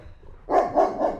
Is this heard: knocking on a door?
no